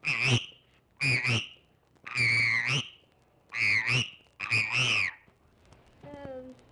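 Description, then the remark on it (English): A child's voice imitates a frog with five loud, nasal croaking calls in a steady rhythm, each about half a second long, followed by a fainter whistle-like tone, recorded on a primitive disc recording machine. “This one's a frog.”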